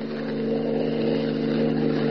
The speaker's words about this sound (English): Planting himself in the middle of the only road leading from the Sudbury airport, Superman waits for Hans Holbein's car to come along. His keen hearing detects an approaching motor, and he stands at rigid attention, every rippling muscle tense.